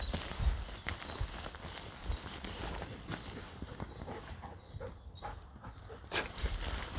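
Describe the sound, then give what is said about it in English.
A Labrador bounds and pounces around on a beach, its paws thudding in quick irregular bursts, with an occasional small whimper over a steady rush of wind and surf. “We hear a Labrador.”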